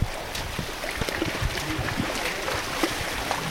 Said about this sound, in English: About 500 yards upstream from the first stop, we round a bend to the sound of rushing water. A mini waterfall gushes over a flat stretch of sand and mud.